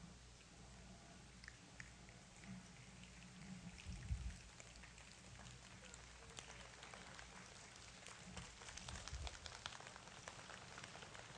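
Rain starts and falls steadily, with countless scattered drops pattering and ticking on a surface over a soft, continuous hiss; fairly quiet, with no voices.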